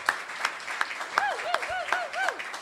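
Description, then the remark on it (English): An audience at a 200-year-old former livery stables building in Pleasant View, Tennessee, breaks into steady, dense applause, the clapping a continuous crackle while a few whistles and scattered cheers rise above it. “If you ever are, yes, big round of applause.”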